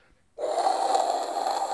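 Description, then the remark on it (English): A voice imitates a milk frother frothing coffee as a coffee-based sound effect: after a brief pause, a steady, breathy hissing whoosh with a low buzzing undertone begins and holds at an even, fairly loud level until the end. “Frothing.”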